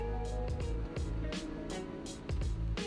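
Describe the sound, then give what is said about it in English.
Steady, dense rain drums on a parked car, heard from inside it, over a low, constant rumble, with brief brighter splashes every half second or so. No one speaks. “It's a lot of raining in my background because it's raining out here.”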